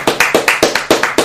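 Quick, steady clapping, about ten sharp, loud claps in an even rhythm lasting just over a second, with no voices.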